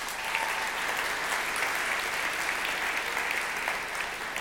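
An audience at a church claps steadily for several seconds, a dense, even wash of many hands with no pauses or individual claps standing out, holding at a fairly constant level throughout, as a speaker comes up to the front.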